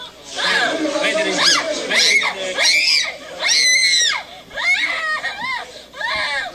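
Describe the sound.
Children aged 1 to 7 scream and wail in anguish in a played video, several high, strained cries rising and breaking in bursts over about six seconds, loud, with a chaotic mix of voices behind them; injured in an airstrike, they lie on a blanket on a Gaza hospital floor.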